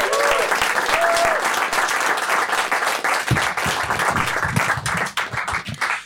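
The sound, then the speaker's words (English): A live audience bursts into sustained applause welcoming a guest who comes on to help answer audience questions, dense rapid clapping at a steady loud level, with a few brief whoops or cheers near the start before it begins to thin at the end. “And so a huge round of applause, please, for Sue Skepner, who's going to come and help us answer some of the questions.”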